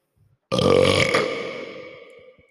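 A single loud, long burp bursts in abruptly and rumbles for about a second and a half, trailing off with a ringing echo in a bathroom. No one talks over it.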